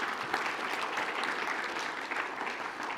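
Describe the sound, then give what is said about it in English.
A crowd applauds steadily for about three seconds, a dense, even patter of many hands clapping at once with no voices rising above it. “You guys are gonna get tired of clapping if you do it after every one, but I'm okay with that, okay?”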